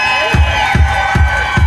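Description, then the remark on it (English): A large audience cheers and applauds itself loudly and continuously, a dense roar of voices and clapping, with a steady rhythmic low thump repeating about every half second beneath it. “Hey, before we go anywhere, thank you all for being here. Give yourselves a big hat.”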